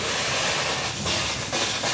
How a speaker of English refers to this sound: Okay, so we're just sitting here minding our own business, and all of a sudden this foam comes spraying out like it thinks there's a fire at an airport.